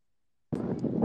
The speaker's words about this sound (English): Yeah, it's a little bit windy, but... Sorry, I've gone into typical Kansas. I'm outside now watching our U9s play. I'm in a blizzard.